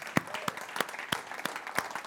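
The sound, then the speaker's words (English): An audience applauds in a steady wash of clapping, with sharper in-unison claps landing about three times per second over the dense patter. No clear voices stand out. “Should we cheer for that?”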